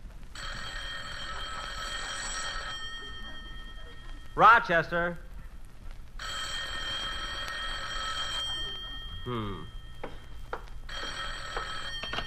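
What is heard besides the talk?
telephone bell ringing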